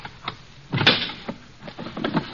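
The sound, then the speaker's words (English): Deemsy's locked drawer is forced open with a loud wooden crack and wrench, followed by a few smaller rattling knocks as it gives way, without any talking. “Now, why would you keep this drawer locked, Deemsy, old boy?”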